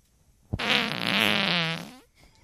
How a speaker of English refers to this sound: That fart's going to be so loud. You put it right up to your butt. I cannot wait to hear that.